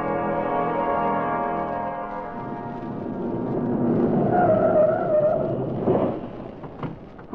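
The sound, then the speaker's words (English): A car engine hums steadily, then brakes squeal briefly as the car pulls up and parks in front of the federal building, followed by a few soft thuds as it settles. No one speaks. “parked his car in front of the federal building and started across the sidewalk”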